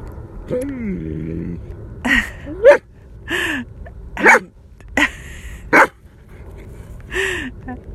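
A male dog barks repeatedly, about half a dozen sharp, loud barks at uneven intervals, opening with a high, wavering whine or yelp.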